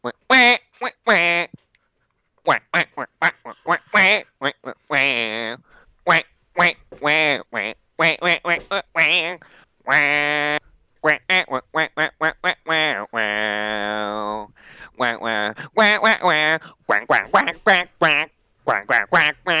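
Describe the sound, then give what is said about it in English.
A human voice sings a tune entirely in nasal duck-like quacks, loud, with rapid rhythmic bursts broken by a few longer, sustained quacked notes. “I can sing … in duck voice”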